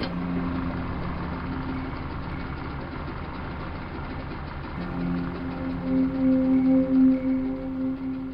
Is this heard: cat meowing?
no